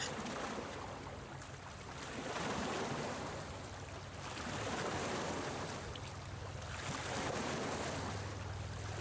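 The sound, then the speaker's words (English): The 23-foot Ocean Scout skiff Old Dog, powered by a 225-horsepower Yamaha outboard, runs across open water out of Bristol, Rhode Island, its steady low engine drone under broad rushing spray and wind that swell and fade every couple of seconds. No one speaks. “Old Dog, his 23-foot Ocean Scout skiff powered by a 225-horsepower Yamaha”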